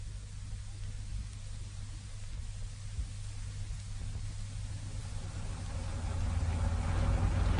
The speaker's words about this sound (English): By Timothy, this traffic really is appalling.